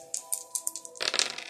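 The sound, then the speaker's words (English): Dice clatter: a few quick, crisp clicks as they tumble, then a denser burst of rattling as they settle. No one speaks. “Let's roll the dice and find out the truth, you know what I'm saying, behind good intentions.”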